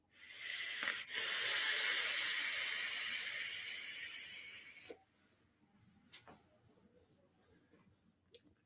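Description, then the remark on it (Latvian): A short breath, then a long, loud, steady airy hiss of vapor being drawn in and blown out from a vape for about four seconds, followed by quiet with a few faint clicks. “Tā jūs paši redzēt, kāds makūns te viedojās.”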